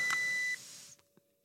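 A breath alcohol tester gives one steady, high-pitched electronic beep lasting about half a second, followed by quiet and two soft clicks, as a person breathes into it until it clicks to check their blood alcohol level; it reads 0.45. No one speaks.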